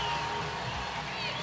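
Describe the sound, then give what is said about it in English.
A stadium crowd cheers in a steady, dense roar of many voices, loud and continuous for the whole moment with no single voice standing out. It is the crowd at an Oklahoma Sooners softball game, everyone standing, with the Sooners leading 5-1. “Listen to this crowd. Everyone is standing.”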